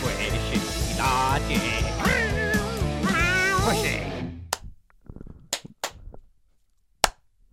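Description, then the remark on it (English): A loud stretch of music breaks off, followed by a handful of sharp, separate hand claps spaced irregularly over a few seconds, crisp against near silence. “That's some banging claps.”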